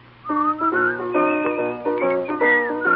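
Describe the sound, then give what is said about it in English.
A melody is whistled in a steady run of sustained notes that rise and fall, fairly loud, with a constant low drone underneath and no talking. “Maybe they'll whistle and you will hear.”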